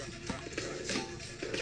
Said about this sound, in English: Sorry for the static.